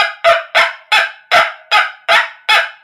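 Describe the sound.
A hand-cranked noisemaker, a cranked version of a tiny tin drum that is usually played by pulling a string, is turned by its crank to imitate a small, yappy dog: seven quick, raspy, nasal yaps in a steady, even rhythm, loud and clear with no voices.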